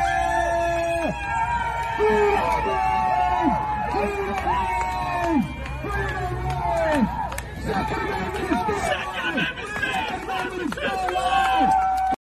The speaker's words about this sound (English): So what you're seeing there is a crowd that was gathered outside the Kenosha courthouse shortly after the verdict was delivered, and a big gathering of people cheering this as a victory for the Second Amendment.